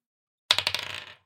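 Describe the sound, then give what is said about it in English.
A d20 die clatters onto a hard table, bouncing in a quick run of sharp clicks that speed up and fade as it rolls to a stop, alone. “Roll a dice. Just a d20?”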